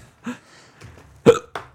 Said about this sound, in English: Beautiful. That was actually just a hiccup.